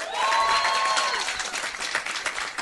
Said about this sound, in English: Give me a round of applause if you've heard the show before.